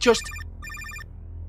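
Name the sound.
telephone ringing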